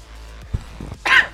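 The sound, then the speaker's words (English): In a very dusty place, a single sharp, breathy sneeze bursts out near the end, loud and hissy, preceded by a few soft low catches of breath. No one speaks. “Bless you. It's very dusty in here.”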